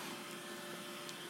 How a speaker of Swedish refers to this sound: Hon har blivit så himla skadad av att gå här i flera månader. Så jag tror att hon är lite förvirrad. Vad är hon från början? Det här är min dammsugarrobot.